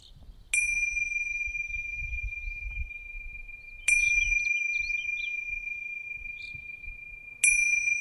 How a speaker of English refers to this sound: I'm going to ring the bell to end the sitting. But as I mentioned the other day, sometimes the bell goes and we feel like we're just in the middle of our sitting. So feel free to continue sitting even though the bell goes.